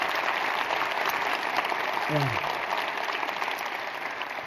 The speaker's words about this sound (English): Hey, do me a favor. Would you give her a huge round of applause?